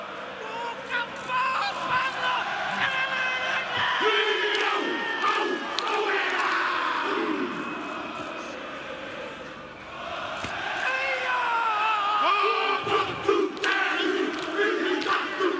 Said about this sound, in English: How many of you have ever seen the rugby teams that do what's called a haka before the game? Have you ever seen this before? It's powerful, like it's intimidating. And so I've got a clip to show you what a haka is.